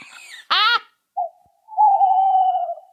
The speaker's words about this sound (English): If the medium is the message, then the message of these owls must be hoots.